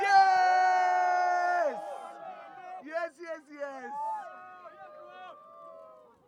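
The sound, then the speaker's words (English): A crowd in Bangalore, hands up in the air, roars with loud, sustained cheering and shouting, then the noise breaks into scattered whoops and yells from individual voices that gradually fade. “Make some noise, Bangalore.”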